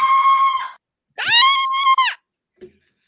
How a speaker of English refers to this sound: I can't go high pitched out. You're saying that you're screaming as you're inhaling? Yes.